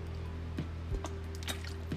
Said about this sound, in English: This water's so good. I'm sorry. But you ever just have a workout where you need to hydrate? Hydration is important.